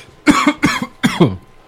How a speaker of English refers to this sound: Pardon my cough, everybody.